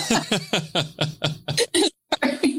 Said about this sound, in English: I got that dry cough right now. It's ain't doing nothing, man. I hadn't had COVID before, so now like I understand like the whole point of this like non-productive cough and how much it actually fucking sucks.